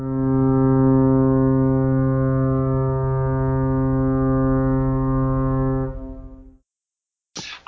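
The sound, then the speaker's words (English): A deep, loud foghorn blares in one long sustained blast for about six seconds, rich with low harmonics, then cuts off abruptly; a brief burst of noise follows after a moment of silence. “that kind of foghorn, that kind of fog. Ben could probably put a sound effect in there if I asked him to.”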